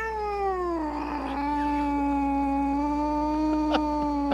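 A cat caught in a fight with a snake lets out one long, loud, drawn-out yowl that slides down in pitch and then holds steady, with a couple of sharp scuffles near the end.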